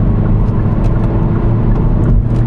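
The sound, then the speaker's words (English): A small Corsa car drives along steadily, its engine hum and road rumble loud, holding an even drone throughout with no voices. “Good, right, back on track to driving this car as Mr.”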